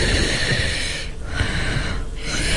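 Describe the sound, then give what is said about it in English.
Heavy breathing of a woman just sitting around, recorded on her own isolated microphone track, loud and rushing, with a couple of brief pauses between breaths and no talking. “here's an ISO of … breathing”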